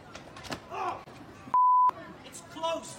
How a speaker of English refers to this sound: Oh, they beeped it for us too.